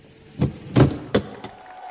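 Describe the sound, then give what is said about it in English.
A heavy cabin door of a 707 airliner is unlatched and opened at the jetway after the plane taxis to a stop, on a bright winter day, giving a quick series of three or four solid clunks and thuds over about a second, fairly loud, with no voices. “The cabin door opened to bright winter sunlight.”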